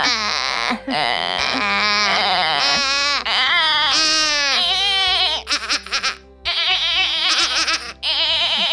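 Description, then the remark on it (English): Several people bleat loudly and continuously like goats, voices overlapping in wavering, nasal cries with brief pauses between bursts. “Wait, let's just do a slow fade into being goats.”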